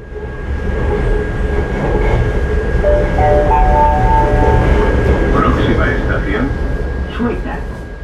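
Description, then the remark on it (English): A metro train rolls steadily along the rails with a loud, continuous rumble, while rising whining tones from the motors or brakes cut through the noise near the middle. “Metro systems.”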